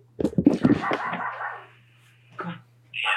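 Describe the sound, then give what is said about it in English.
A dog being let outside barks a few quick times, then lets out a drawn-out, high whimpering whine, with a short yelp and another whine near the end. “I'm going to let my dog outside.”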